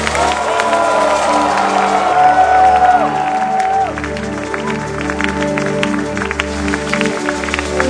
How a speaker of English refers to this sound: And let somebody clap his hands and scream to the Lord.